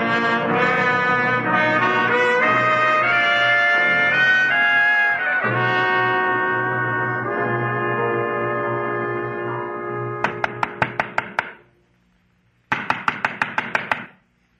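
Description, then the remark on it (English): Sustained orchestral music gives way to two quick bursts of sharp, rapid knocking on the door of Pilar the peddler in a radio drama, about seven raps each, separated by a short pause. There is no talking. “Come on where? To knock on a door.”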